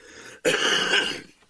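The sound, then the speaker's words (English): A single harsh, raspy smoker's cough bursts out after a brief silence, loud and rough for nearly a second before trailing off into quiet hiss. “All right, so that was this week's Jukebox along with some smoker's cough.”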